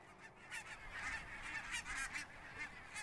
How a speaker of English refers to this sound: Yes, if you look up in the sky in the fall, wild geese flying in formation are a familiar sight. Their haunting honks can carry quite a distance.